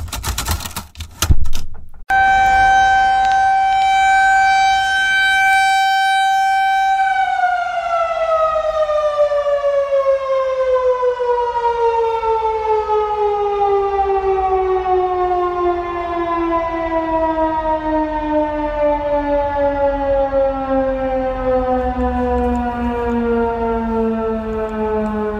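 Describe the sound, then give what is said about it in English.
An outdoor tornado warning siren in Monroe County, Michigan, sounds during a regularly scheduled monthly test: a loud, steady wail after a few clicks, then slowly winds down, its pitch sliding lower and lower for a long stretch with no voices. “Heard was one of Monroe County's outdoor sirens during a regularly scheduled monthly test.”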